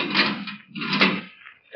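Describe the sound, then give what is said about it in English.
A heavy steel door in the Marquardt building grinds open in two long, rough scraping pushes, fairly loud, with a brief pause between them and no voices. “I kept a check on the time, and it was 20 minutes before they were due to arrive at the Marquardt building when a sound stopped me. The steel door was being opened.”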